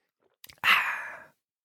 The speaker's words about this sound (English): I'll take a sip of tea.